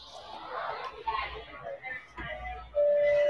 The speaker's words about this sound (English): Okay, so you ready for your ding dong? I am. I'm waiting to hear that door chime.